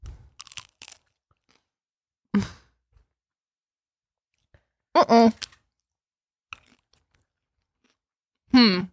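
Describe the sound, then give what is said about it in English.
A quick cluster of crisp crunches as something brittle is bitten and chewed, followed by quiet pauses broken by a few short, voiced murmurs. “Here's the crunch.”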